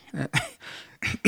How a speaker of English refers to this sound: Clear my throat.